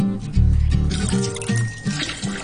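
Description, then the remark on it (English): Water pours steadily into a pan, being readied to boil for pasta, a full gushing splash with a hollow resonant tone that shifts as it fills, with no one talking. “And the next stage, you're also going to go and get some water ready because you're going to get your pasta sorted”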